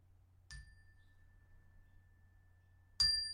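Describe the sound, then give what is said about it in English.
A small meditation bell is struck twice, about two and a half seconds apart, as a signal to take a deep breath and open the eyes; the first tone rings out and lingers steadily before a second, louder strike, over a faint low background hum. “And just in a moment, I'm going to play a little bell.”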